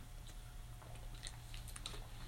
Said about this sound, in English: Let me drink some water.